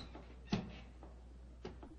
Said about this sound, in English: Holmes, Holmes, look up there, Gallery. The door's opening.